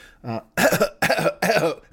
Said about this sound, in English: Let me clear my throat.